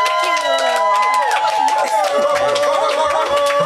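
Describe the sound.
A crowd claps steadily while voices cheer and whoop over the top, a dense, lively burst of applause that holds at an even volume throughout.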